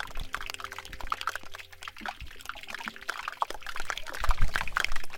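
Dense, irregular crackling and popping of air bubbles escaping the melting ice of a glacier in Svalbard, northern Norway, a steady fizzing patter of tiny clicks and watery pops, continuous with no voices.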